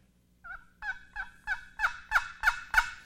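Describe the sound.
A wooden turkey box call, used to call turkeys once they fly down off the roost, scrapes out a series of about eight raspy yelps, rising in loudness and spaced evenly, clear with no talking.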